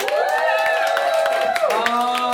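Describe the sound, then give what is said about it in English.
A live show audience applauds with dense, steady clapping while voices cheer and whoop over it, the noise staying loud and even for a couple of seconds. “Give us a round of applause if this is your first time. Give me a shout out if you are coming back again.”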